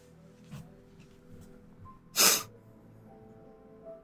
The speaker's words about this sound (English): I coughed a lot about 10 minutes ago, which is why I'm sniffling. I promise I'm not crying.